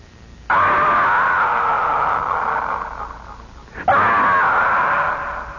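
Two long, loud screams, one right after the other, each a sustained high-pitched cry held for several seconds, piercing, with no talking around them.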